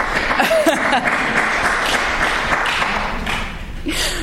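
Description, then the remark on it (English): Steady applause from a crowd, a dense wash of many hands clapping at once, with faint voices murmuring underneath. “Anybody that clapped also want to ask a question?”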